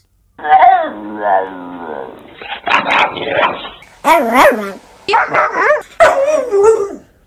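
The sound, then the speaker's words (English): A person imitates a dog in a run of howling, whining vocal bursts, yowling out what sounds like three drawn-out words, loud with short pauses between phrases. “Those three little words that you want to hear from every dog.”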